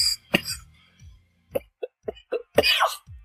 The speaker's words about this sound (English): Now, it's cold up here. I got a cold. I got to keep this cough from going.